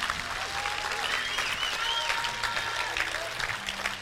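A crowd claps steadily for several seconds for supporters of Destiny Church, a dense, even wash of applause with no breaks, holding at a moderate loudness throughout.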